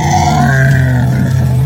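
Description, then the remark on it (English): A voice imitating a monster's roar: one loud, sustained, low guttural growl with a rough, rasping edge, holding steady for nearly two seconds without words. “And there are bits of stone literally falling from the ceiling just from the sheer ferocity of its roar.”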